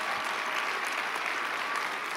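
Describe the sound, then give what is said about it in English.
A church audience applauds Pastor Rodney Howard Brown steadily, a dense wash of many hands clapping at once with no breaks, sustained and fairly loud throughout, with no voices standing out. “How about a big hand clap for Pastor Rodney Howard Brown?”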